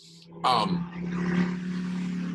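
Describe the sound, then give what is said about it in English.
A motorcycle goes by, its engine a steady low droning hum with a rough, noisy rumble that holds at an even loudness for a couple of seconds, with a brief voice at the start. “Sorry about the motorcycle, whatever that was.”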